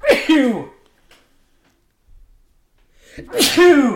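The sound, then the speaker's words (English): Two loud sneezes separated by a few seconds of near silence, each a sharp explosive burst with a brief voiced onset and a rough, breathy release. “All Sneezes right. hurt.”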